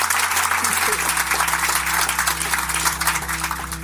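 An audience applauds steadily, with many hands clapping in a dense, crackling wash that holds at a fairly loud, even level for a few seconds without fading.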